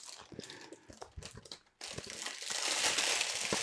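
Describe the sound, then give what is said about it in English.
Popping candy bonbons called fireworks crackle in a mouth with dense, irregular snaps and fizzing clicks, first scattered and uneven, then after a brief pause swelling into a steady, louder rain-like sizzle. “Sounds like rain, doesn't it?”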